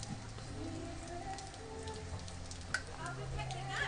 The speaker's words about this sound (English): Yeah, the rain is really coming down, eh?